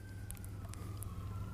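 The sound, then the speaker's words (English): Sirens of fire engines and paramedic vehicles next door wail faintly as they go by, a thin steady tone drifting slightly in pitch over a low background rumble, with no one speaking. “We'll just wait till the sirens go by for a moment.”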